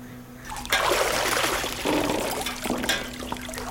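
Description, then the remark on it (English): Hot water pours steadily into a bath, a continuous splashing rush with gurgling surges, starting softly and then swelling loud for several seconds. “Is the water to your liking, dear? I can have the slave bring more hot.”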